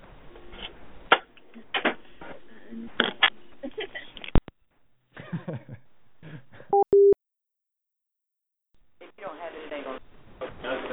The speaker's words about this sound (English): Well, I hear a ringing phone. It does that sometimes. What is it doing?